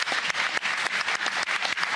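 Steady audience applause fills the whole two seconds, a dense wash of many hands clapping at once with no single claps standing out and no voices over it.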